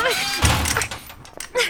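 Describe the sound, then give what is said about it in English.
A heavy door is shoved and bangs hard in a low, booming thud, followed by rattling and strained voices grunting and shouting as they try to hold the door shut against someone forcing it open. “Hold the door!”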